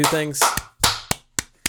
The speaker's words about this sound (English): Thank you for your service. We clap right into the mic for you. Yep.